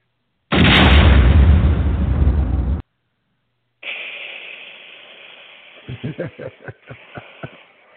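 A loud, booming cannon blast roars for a couple of seconds and cuts off abruptly; after a short silence, a rumbling tail gives way to a quick series of sharp, cracking pops.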